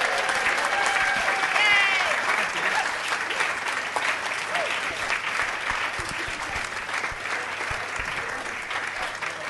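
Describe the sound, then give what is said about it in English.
An audience claps steadily and loudly for several seconds for performers as they exit the stage, a dense wash of hand claps that tapers slightly toward the end, with a few whistles and voices mixed in. “So can you give a round of applause to these guys as they exit the stage?”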